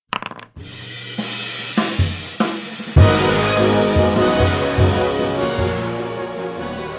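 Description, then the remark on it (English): Several sharp clicks, then a loud burst of dice clattering and rattling across a hard tabletop that keeps tumbling for a few seconds, with no talking. “So, I rolled random this week”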